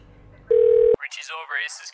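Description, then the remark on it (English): A single steady telephone ringback tone sounds loudly for about half a second over a faint line hiss, then cuts off as a voice starts talking. “It's ringing.”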